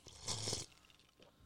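A single short slurping sip of bottled water from a little cup decorated with roses and sunflowers, a hissy intake lasting about half a second followed by quiet.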